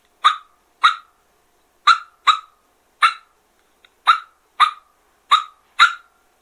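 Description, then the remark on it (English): A turkey call imitates a wild turkey's alarm putt: nine sharp, high-pitched putts, loud and clipped, spaced irregularly in loose pairs with short pauses between them; no one speaks over them. “Alarm putt.”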